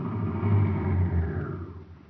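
A car engine rumbles low and steady, its deep drone easing off and fading as the vehicle slows to a stop on a road. No voices are heard.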